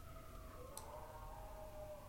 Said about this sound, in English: There's some sirens going by and all the neighborhood dogs are just like howling.